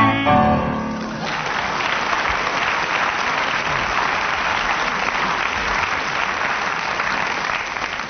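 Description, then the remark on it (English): A sung line ends in the first second, then an audience breaks into steady, full applause that stays loud and even for several seconds with no talking over it. “Well, in response to the audience's applause, I'm not awarding any marks for that round.”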